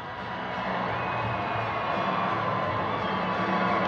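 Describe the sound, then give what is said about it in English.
A large arena crowd at a Vancouver Canucks hockey game applauds and cheers for Prince Harry at the ceremonial first puck drop, a steady, dense roar of clapping and shouts that holds loud throughout, swelling slightly toward the end with scattered whoops rising above it. “Listen to the applause. He's getting please join Prince Harry big applause.”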